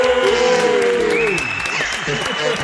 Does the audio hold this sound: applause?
yes